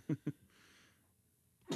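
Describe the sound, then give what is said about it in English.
Two short, throaty bursts come close together, then a quiet pause before a sudden, loud, breathy sneeze erupts at the end. “Bless you.”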